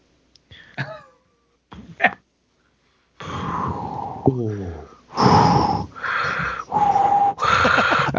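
Loud, rasping breaths and snorting exhales come in several heavy bursts, interspersed with short throaty noises. It sounds like an exaggerated vocal imitation of heavy breathing.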